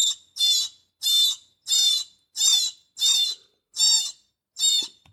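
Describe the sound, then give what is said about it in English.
A woodpecker blend distress call used as a prey sound, played from a Fox Pro X2S electronic predator caller: about eight shrill, raspy squeals repeating at a steady, even pace, loud, with no voices. “Or you might switch to this woodpecker blend.”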